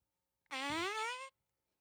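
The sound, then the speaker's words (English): A single fake fart sound effect, a loud buzzy tone lasting under a second with a slight upward bend in pitch, standing alone with no talking around it. “All right, well, he thought that was a real fart.”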